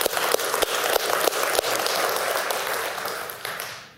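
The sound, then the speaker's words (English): A crowd claps steadily, dense overlapping applause holding strong for several seconds before easing off slightly at the end, with a few sharper individual claps standing out. “you can clap for that.”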